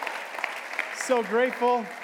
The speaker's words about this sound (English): One thing, this is our first worship service in this new space. I mean, how awesome is this? This is so great. Come on, a little cheer for that.